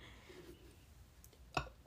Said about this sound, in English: Sorry, I just burped.